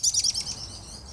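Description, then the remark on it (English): A quick burst of high, bright bird chirps, several rapid tweets in the first half second that fade out, heard alone with no voices. “I can offer you a bird flying through the air.”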